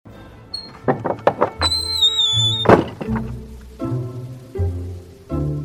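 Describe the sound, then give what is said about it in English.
A door is opened with a series of wooden knocks and thunks, a bright ringing chime sounding briefly as it swings, followed by softer muffled bumps and a low hum, with rain falling outside. “Echelance, one of his regulars, came in one rainy Wednesday morning.”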